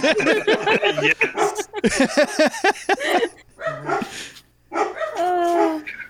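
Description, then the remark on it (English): Dogs bark loudly in rapid, overlapping bursts, pause briefly, then break into more barking that ends in a drawn-out, high yelping whine. “Dogs.”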